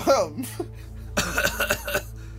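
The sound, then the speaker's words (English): At night, a brief vocal sound, then a polite, restrained cough: a few soft throaty bursts in quick succession, moderately loud against a quiet background hum. “I coughed politely to make him aware of my approach.”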